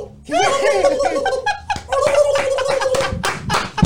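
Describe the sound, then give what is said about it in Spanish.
A voice imitates a turkey's gobble with a loud, warbling, gurgling trill that wavers rapidly in pitch for several seconds, followed by a brief pause and a second burst. “El mejor pavo, el mejor, la mejor imitación del, de un pavo que yo he escuchado”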